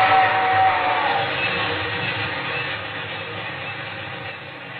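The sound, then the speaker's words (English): A train rumbles past in a dense, steady roar that slowly fades as it pulls away, with a brief faint whistle-like tone early on and no voices. “The train was gone, and so was that awful feeling inside.”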